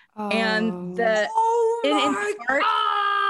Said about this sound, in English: Moment for screaming. That makes me so mad.